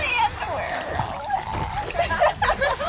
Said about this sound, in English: Meantime, someone else jumps into the water.